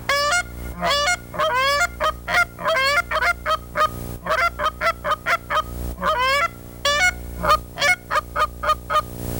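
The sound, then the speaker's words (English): A variable tone honker goose call blown with the bell removed and a hand cupped as the bell, giving a rapid series of loud, honking notes with rising and falling pitch in quick bursts, with no talking. “You can remove the bell, and your hand becomes the bell.”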